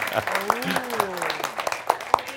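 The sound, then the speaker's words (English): Scattered applause from an audience for a woman who answered a question, a quick run of sharp claps rising and falling over a couple of seconds, with a low voice murmuring underneath. “So, but at least she gets an applause for answering the damn question.”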